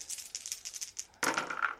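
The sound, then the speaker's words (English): Five dice rattle and tumble across a hard tabletop, a run of quick light clicks followed by a louder, denser clatter near the end, fairly quiet with no talking. “You don't have to roll the last one.”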